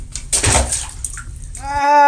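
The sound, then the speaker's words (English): A loud burst of splashing water sloshes for about a second, settling into softer trickling, then a voice abruptly cries out. “And why is there water everywhere?”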